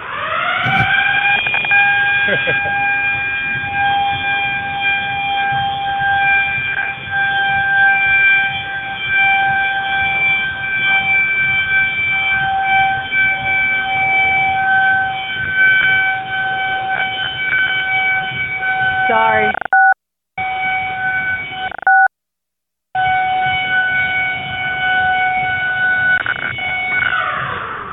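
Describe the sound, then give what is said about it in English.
A loud, steady wailing gym alarm siren, a Lunk Alarm set off on purpose, blares continuously for nearly half a minute, cutting out briefly twice near the end before resuming, with no one talking over it. “Will you turn on the Lunk Alarm for me? It's got to go off for 30 seconds.”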